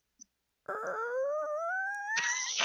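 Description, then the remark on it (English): A voice imitates a slow, creaking haunted-house door: a long, wavering, nasal tone that gradually rises in pitch for about two seconds, then ends in a harsher, raspier squeal. “Can you simulate the sound of a door creaking open, like an old haunted house door?”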